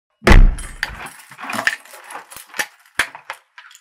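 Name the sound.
door being locked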